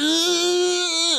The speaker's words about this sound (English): I can listen to Stallone scream. That would be a great wake-up call.